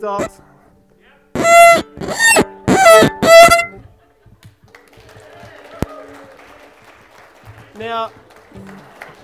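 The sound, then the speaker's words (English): Light audience clapping after a debut violin performance, a soft scattered patter that rises after four loud, strongly tonal blasts and carries on steadily for several seconds, with a brief voice-like sound cutting in near the end. “I didn't expect a clap.”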